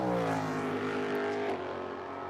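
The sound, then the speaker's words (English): A sustained high-pitched engine whine with rising and shifting harmonics from race cars running on a circuit, loud and steady throughout with no talking. “So, cars out on the circuit.”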